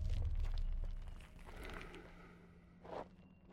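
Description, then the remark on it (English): Faint shuffling footsteps and scattered rustling of someone scavenging the area, feeling around and shifting their weight on the other side of a rock, with a low rumble early on and a sharper scrape near the end. “It sounded like someone scavenging the area, feeling around. You could even hear them shift their weight.”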